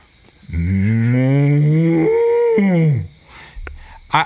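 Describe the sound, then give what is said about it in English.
A person imitates a cow with one loud, drawn-out moo lasting a couple of seconds, its pitch bending up and then sliding down, followed by a few faint shuffling sounds. “No, if you want to hear the utter one, I'll tell you about Mu Yu. Now, I almost went to a cow college, and it was University of Maine in Orono.”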